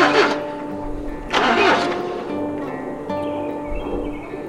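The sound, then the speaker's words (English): A tractor engine being started during an attempt to fix the tractor cranks in two loud, grinding bursts, then settles into a steady, rumbling idle, with no voices. “They're trying to fix a tractor.”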